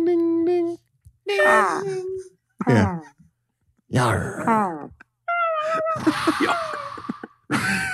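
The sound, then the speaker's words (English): A voice imitates a foghorn in a series of loud, drawn-out wailing hoots, some steady and some sliding in pitch, separated by short pauses. “I can hear the foghorn right now.”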